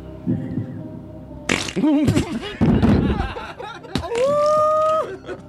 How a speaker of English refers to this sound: So we're going to play some more farts.